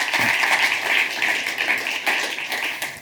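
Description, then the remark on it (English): A crowd applauds a volunteer after a spinning demonstration of conservation of angular momentum, a dense, steady patter of many hands clapping at an even level for a few seconds, with no voices rising above it. “Big round of applause.”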